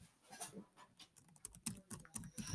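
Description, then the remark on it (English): Rapid, irregular clicking of computer keyboard keys from fake typing, a quick clattering run of keystrokes with no one speaking. “Stop typing on fake typing on the computer. I like the sound, okay?”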